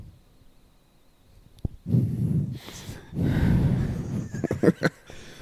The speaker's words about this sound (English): Guys. Stop breathing into the microphones.